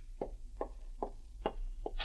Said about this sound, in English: And the following morning, as you pack your bags, there's a knock on the door of your room at the inn.